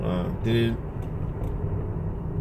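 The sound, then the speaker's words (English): Steady low rumble of a moving car's interior, road and engine noise droning continuously while a man talks over it. “Did it in the car.”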